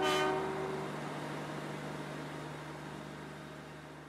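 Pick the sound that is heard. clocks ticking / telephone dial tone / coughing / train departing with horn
train departing with horn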